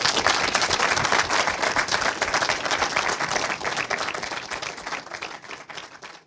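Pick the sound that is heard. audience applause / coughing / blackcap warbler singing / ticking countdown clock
audience applause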